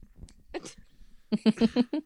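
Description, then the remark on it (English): A short, throaty burp is followed by a quick rhythmic run of five low, voiced belching pulses. The sounds are fairly loud over faint background noise. “Ooh, good burp.”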